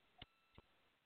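Two crisp clock ticks sound about a third of a second apart, sharp against a quiet, faintly hissy background, with no talking.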